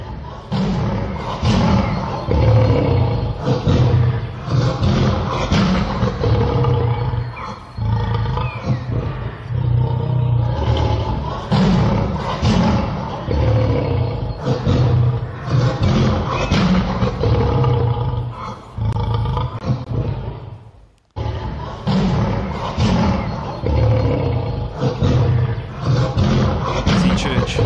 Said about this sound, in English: You heard a lion roar before? You heard what it does on the inside of you? Listen to this lion roar.